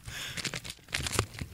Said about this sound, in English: So... let's see if I can quietly pop some bubble wrap.